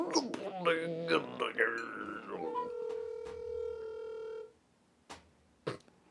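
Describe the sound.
Voices talk briefly, then a steady electronic phone ring tone sounds once for about two seconds over the line as a call is placed and the caller waits for the other person to pick up, followed by near silence broken by a couple of soft clicks.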